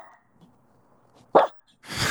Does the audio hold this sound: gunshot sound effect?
no